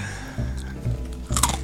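Loud crunching of Twiglets being chewed, with several distinct bites and munches in a short burst and no talking.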